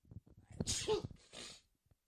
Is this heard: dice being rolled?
no